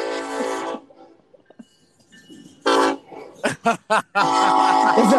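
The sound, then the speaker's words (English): A train passes close by on tracks right beside a building, making the building shake, sounding its horn in loud, sustained blasts: two long ones, a few quick short toots, then another long blast, with a low rumble between them. “Well, we're literally right on the train tracks.”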